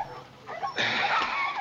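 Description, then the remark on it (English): Small dogs yip and whimper in a short, excited flurry as someone plays with them on the floor. The sound swells into a dense, scrabbling burst partway through, with no talking. “Hope he's playing with the dogs on the floor.”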